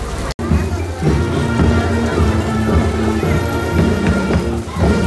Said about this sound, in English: Well, the rain has started downpouring. Yet the parade is still going on, including marching bands and all kinds of other great floats. Another great day at the Minnesota State Fair.